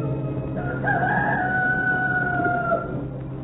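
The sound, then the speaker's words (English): A rooster crows once in the cool morning, a long, strained cock-a-doodle-doo that rises and then holds a steady, bright pitch for about two seconds over a constant low hum. “And in the cool morning, while the farmer figured the trigger of his blunderbuss, the knock-kneed man turned on his back as the cock crowed twice and opened his eyes.”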